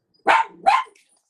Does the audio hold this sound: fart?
no